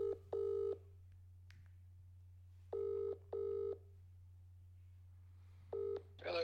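A phone ringing out on the line with a double-pulse ring tone, repeating three times at steady intervals over a low constant hum, with a click as the call connects at the end.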